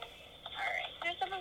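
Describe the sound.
A tinny, narrow-band telephone line carries a brief stretch of a caller's voice, thin and muffled as if heard through a handset, with faint line hiss underneath.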